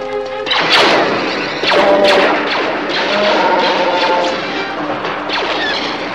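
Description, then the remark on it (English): Heavy blast doors slam shut with two loud, booming metallic impacts in the first two seconds, followed by a sustained grinding, clanking roar that stays loud to the end. No voices. “Close the blast doors.”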